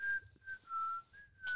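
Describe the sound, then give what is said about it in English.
A person whistles a short, simple tune, a clear steady pitch that dips and rises across several held notes, close and fairly quiet, with no talking. “I think he's whistling Ring Around Rosie.”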